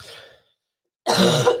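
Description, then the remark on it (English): A person with flu and an upper respiratory infection clears their throat with a rough cough: a softer rasp that trails off, a brief silence, then a louder, harsher burst at the end. “And we may cough several times throughout the night.”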